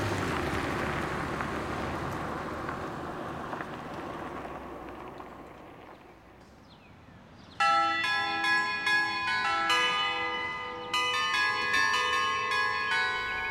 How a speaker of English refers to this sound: That's an annoying doorbell.